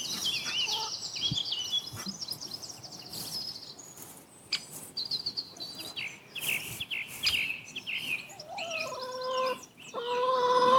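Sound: chickens clucking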